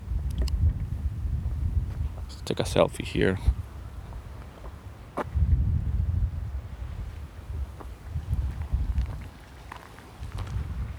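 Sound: wind blowing outdoors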